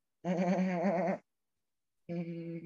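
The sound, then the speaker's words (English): A person tries to imitate a horse whinny, but the wavering, nasal cries come out sounding like a goat's bleat; two loud bursts separated by a pause of silence. “That horse impression sucked. You sound like a goat.”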